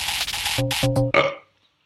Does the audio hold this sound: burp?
yes